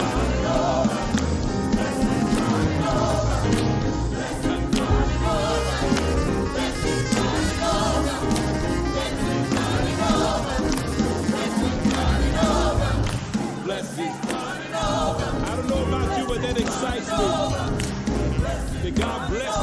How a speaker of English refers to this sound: be a clapper, but everybody can clap their hands. Come on, let's do this.